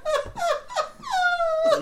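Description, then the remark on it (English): A dog that has just been woken up lets out a run of high, squeaky whines: three short falling cries followed by a longer drawn-out whimper, then another begins, with no talking. “Woke my dog up like, what?”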